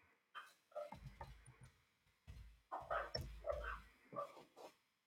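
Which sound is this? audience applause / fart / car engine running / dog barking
dog barking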